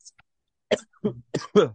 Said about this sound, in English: My God, sorry, I'm just coughing at it.